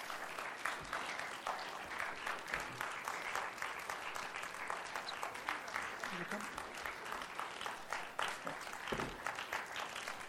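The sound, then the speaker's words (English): A crowd claps steadily and continuously for the panel as its members make their way up, a dense wash of many hands filling the room, with scattered faint voices and cheers underneath. “And if they want to work their way up, you guys give them a round of applause as they start working their way up here.”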